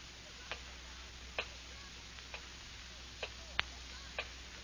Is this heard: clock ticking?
yes